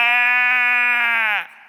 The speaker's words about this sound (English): What's the bleating of sheep I hear? Those are oxen.